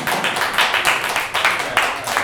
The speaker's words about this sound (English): Now, round of applause for Montre Pals Go America. Wow.